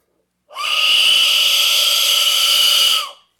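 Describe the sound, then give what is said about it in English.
An Aztec death whistle, played without echo, blown in one loud, sustained blast of about two and a half seconds: a harsh, breathy, high shriek with a steady pitch, heard alone without any talking. “There used to be like thousands of these lined up, and they used to run at you during combat with all these blowing at the same time. So it just sounded horrific.”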